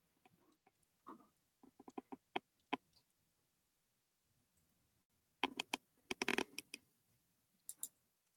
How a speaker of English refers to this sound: I was typing to James. You're typing up what? I was typing something to James.